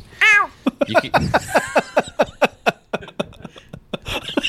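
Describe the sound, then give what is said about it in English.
A person imitates a cat with one loud, convincing meow that rises and falls, followed by a quick run of short, rhythmic vocal bursts like laughter. “No human should be that good at that.”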